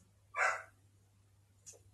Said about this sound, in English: So I guess that means I got to get him to take the dog out because y'all hear her barking.